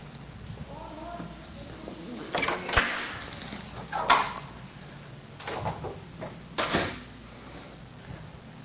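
door being closed

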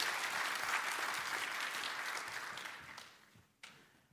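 audience applause

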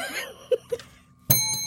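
bell ringing

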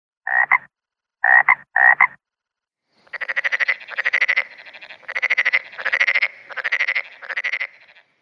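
frogs croaking

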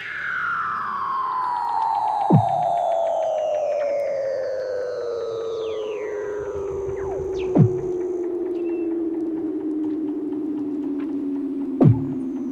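weddell seal underwater vocalizations

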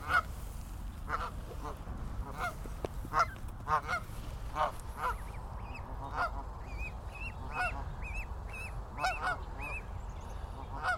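geese honking

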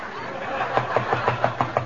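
knocking

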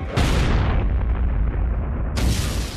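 big explosion

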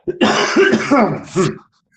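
cough and throat clearing

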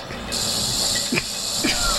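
snake hissing

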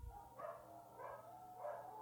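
dog howling

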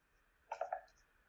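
dice rolling

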